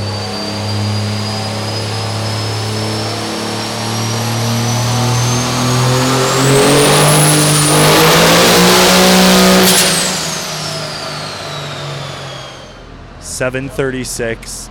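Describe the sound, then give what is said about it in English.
A truck engine revs hard and steadily during a dyno pull, making 736.8 horsepower and 1,129.8 foot-pounds of torque uncorrected, its loud, droning roar climbing in pitch for about ten seconds before winding down, with a voice starting up at the very end. “That's 736.8 horsepower, 1,129.8 foot-pounds of torque are the uncorrected numbers we're looking at right now.”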